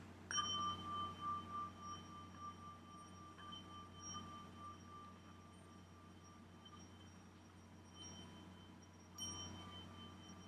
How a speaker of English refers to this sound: And then I have like a little ringing singing bowls like this one. Wait, I've got something in it.